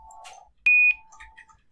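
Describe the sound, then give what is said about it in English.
A voice imitating a dial-up modem: a loud, piercing high-pitched beep lasting about a quarter second, preceded by a burst of warbling noise and followed by a fainter, steady lower hum with scattered chirps. “Do you remember also when you guys made me make a modem noise? I have that one too. Play it.”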